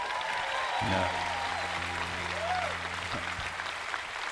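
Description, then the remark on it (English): A crowd breaks into sustained applause, a dense wash of many hands clapping at steady volume throughout, with a low hum running underneath. “You're clapping.”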